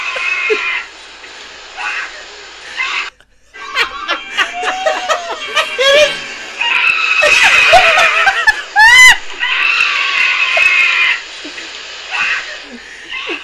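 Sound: terrified scream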